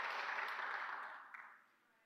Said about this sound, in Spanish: O tú le puedes dar un aplauso al Padre en este día.